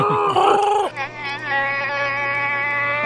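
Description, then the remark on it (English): A person imitates Chewbacca's Wookiee roar as he cheers on Solo, with a loud, warbling, bleat-like howl that breaks after about a second into a long, steady, buzzy vocal drone. “So they get through Passaic, though, and Solo's friends just cheer him on. Chewbacca's just like...”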